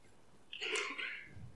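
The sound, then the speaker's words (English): A single sneeze rings out during a church sermon, a quick sharp burst of air lasting under a second, against a quiet background. “Bless you, my darling.”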